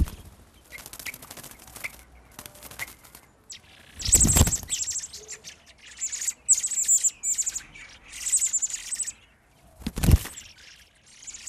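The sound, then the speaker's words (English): Baby blackbirds chirp in high, excited clusters from a nest, with two sharp whooshing wing flaps from the mother blackbird bursting through, one early and one near the end. “they were baby blackbirds in a nest, and you could hear the wing flaps from the mother”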